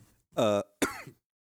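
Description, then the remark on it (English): Two fairly loud bursts: a voiced, strained hack followed by a harsher, breathy cough, as someone coughs or clears their throat. No speech accompanies them. “I can't. I'm coughing.”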